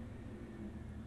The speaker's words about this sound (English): That's a garbage truck.